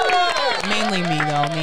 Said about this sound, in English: A little clap for both of us.